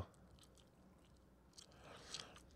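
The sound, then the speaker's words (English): Quiet chewing of gum, with soft wet smacks and small clicks of the mouth repeating unevenly, growing a little more pronounced near the end. No one speaks. “I'm chewing this gum.”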